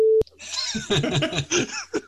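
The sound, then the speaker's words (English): A short, steady, pure-tone censor beep lasting about a fifth of a second, followed by a burst of rhythmic laughter and giggling. “In the edit, I want you to just beep.”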